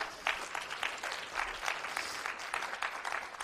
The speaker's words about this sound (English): So I want to thank you. And I think you should give yourself a good round of applause.